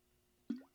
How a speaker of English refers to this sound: Let me get my first sip of water for 2021.